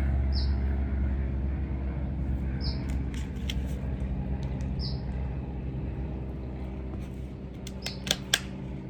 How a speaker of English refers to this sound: I'm gonna let this plane go.